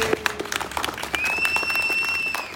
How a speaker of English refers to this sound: Let us give a round of applause to Finnspark, who organized this every year.